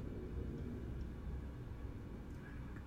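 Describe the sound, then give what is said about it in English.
A steady, low rumbling drone of an airplane passing overhead fills the whole stretch, fairly even in loudness, with no one talking. “You guys hear that airplane? That's really loud.”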